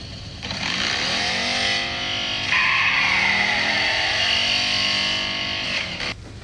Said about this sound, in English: You see that motorcycle go by? Yeah, and I saw the license plate, too.